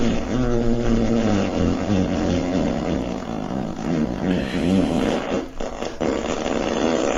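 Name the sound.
long fart sound effect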